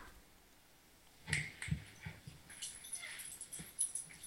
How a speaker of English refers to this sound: I hear a dog. Yep. So now I gotta pet him and give him love while I watch a movie.